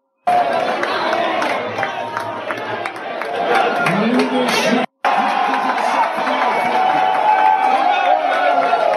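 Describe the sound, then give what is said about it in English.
A large stadium crowd roars and cheers a quarterback sack in a steady, loud wash of voices, with one brief cut to silence near the middle before the sustained cheering resumes. “Well, listen, I think they're cheering the sack then.”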